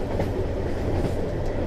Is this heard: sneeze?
no